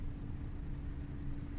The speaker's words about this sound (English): This is our bus.